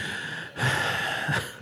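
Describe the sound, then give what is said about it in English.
Heavy, rasping breathing, a steady airy exhale swelling into a louder, harsher rush of breath before fading, with no one speaking. “I already got the audio. With that heavy breathing, I'm going to amplify it.”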